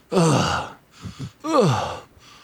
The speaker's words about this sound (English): Oh no, he's still breathing. He's not moving much though.